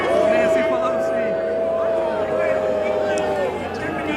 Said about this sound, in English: Booing. That kid in the background was the kicker there. Why is everybody booing? Why is everybody booing?